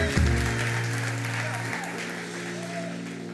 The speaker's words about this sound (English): Come on, somebody give the Lord a clap. Amen. Hallelujah. Hallelujah.